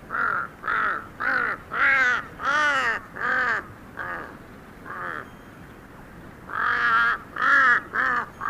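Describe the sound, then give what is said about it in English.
A huge Tibetan crow hopping across a high field calls in a loud, steady series of harsh, nasal caws, about a dozen in quick succession with a brief pause midway, with no voices. “I remember being startled by the bizarre sounds made by a huge Tibetan crow hopping across a high field.”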